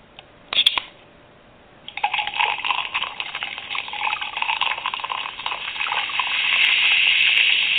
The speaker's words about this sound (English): So let's pour us another big one.